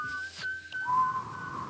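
Someone whistles by drawing breath in, producing a thin, breathy tone that holds, breaks, then slides to a slightly lower wavering pitch. The whistle is moderately loud, with no talking.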